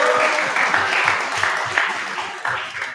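A crowd applauds steadily, dense overlapping claps forming a loud, continuous wash of sound that holds for several seconds with slight swells.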